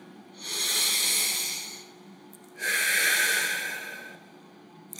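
Two long, deep breaths, one drawn in and one let out, airy, with a short pause between them and no talking, taken as part of a guided breathing exercise.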